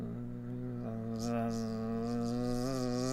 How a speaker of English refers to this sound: coming back in your direction pretty fast. A buzzing potbelly pig-sized bee coming in your direction with her leather armor on and coming your beelining for you, if you excuse the pun.